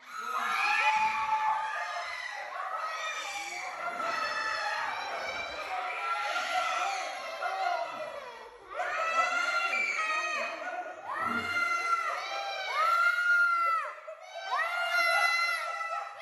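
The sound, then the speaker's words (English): A dense crowd of children shrieking and wailing, many high overlapping voices rising and falling continuously for the whole stretch, loud with brief dips between bursts. “Okay, let me see if I can find these screams and tears of children.”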